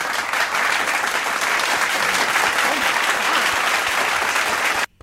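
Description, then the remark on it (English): A round-of-applause sound effect: a loud, dense burst of many hands clapping steadily for almost five seconds with a hissy, rain-like texture before cutting off abruptly. “Thank you for that round of applause. It sounded like loud rain hitting a roof at high speeds.”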